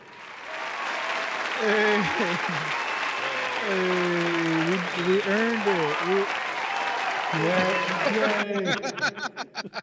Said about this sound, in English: Yay. We earned it. Yay. You got your applause break you wanted.